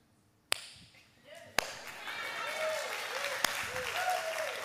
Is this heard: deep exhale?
no